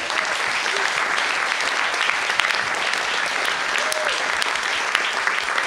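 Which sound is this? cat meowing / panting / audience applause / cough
audience applause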